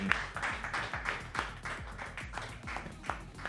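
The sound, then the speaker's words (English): A burst of audience applause for a professor being introduced, dense and steady for a few seconds, many hands clapping at once with a fairly loud, crowded texture and no one speaking. “Okay, ladies and gentlemen, your grades are dependent on how loud you clap”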